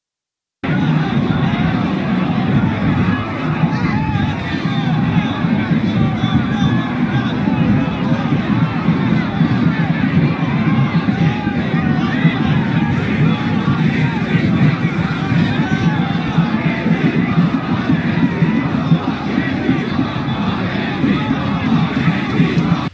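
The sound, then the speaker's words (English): A large crowd chants "F Antifa" in a dense, steady wall of voices, many people shouting together without pause for over twenty seconds, loud and unbroken throughout. “Now people are saying F Antifa, F Antifa, they're actually chanting it.”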